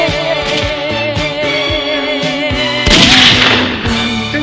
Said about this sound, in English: Loudest gunshots of my life.